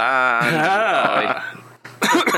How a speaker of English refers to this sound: Unlike when … coughs.